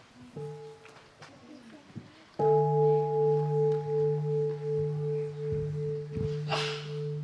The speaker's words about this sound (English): The bell first.